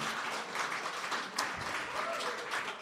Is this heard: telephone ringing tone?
no